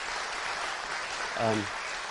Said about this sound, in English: But combining two churches, that's remarkable. You don't see it anywhere. Yeah, let's have a round of applause about that, too.